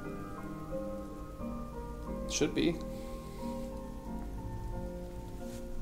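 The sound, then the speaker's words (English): Steady rain patters on a surface throughout, a soft continuous hiss beneath a man's voice briefly speaking, with a short louder clatter near the middle. “Is Aegis alright in the rain”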